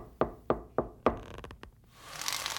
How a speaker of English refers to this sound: Oh, why are you knocking on my door? You never knock.